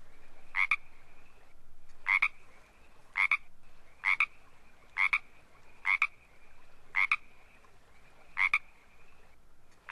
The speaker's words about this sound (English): But in fact, unless the film is set in Hollywood or nearby, then this is the completely wrong frog for the soundtrack, because this is the Pacific tree frog.